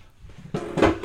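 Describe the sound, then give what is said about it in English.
A chair swivel as someone turns around to face another person: after a quiet start, a scraping, creaky rustle builds, swells into a louder squeaky grind, and then carries on as steady friction noise. “I'm going to use this dramatic chair noise so I can face Miguel”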